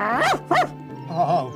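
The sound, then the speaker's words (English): A dog barks twice in quick succession, loud, then lets out a longer, softer whining bark after a short pause. “Another dog ruin my seat?”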